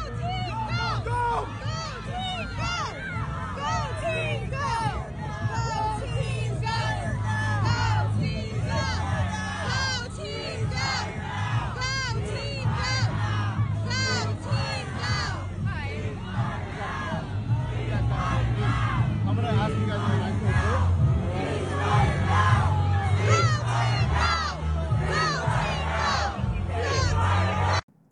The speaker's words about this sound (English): Here's video on New Year's Day protesters at the Rose Parade in Pasadena.